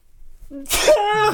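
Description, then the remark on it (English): A single loud sneeze: a short voiced intake building to a sharp, breathy burst, trailing off into a brief vocal tail. “I sneezed about it.”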